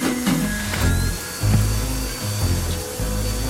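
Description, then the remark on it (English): A vacuum cleaner runs steadily, vacuuming up hair, its motor droning with a low hum and a faint high whine, the pitch dipping briefly as it is pushed around. “You run the vacuum for hair, and I'll wash the glasses we used.”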